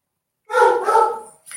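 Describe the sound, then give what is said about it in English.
A dog named Marley lets out one long, drawn-out bark with a whiny, howling edge, fairly loud, followed by the start of another bark. No one talks over it. “There's your boy, Marley is, missing his mother.”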